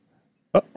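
A single sharp, fairly loud sneeze bursts out after near silence, followed by a softer short breathy sound.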